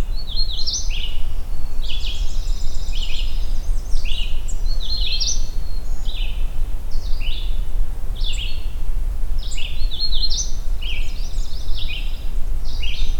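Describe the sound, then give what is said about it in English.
A songbird sings a repeated series of bright, high, warbling phrases in short bursts, clear over a steady low rumble of background noise, with no talking. “Merlin seems to think this is a red start.”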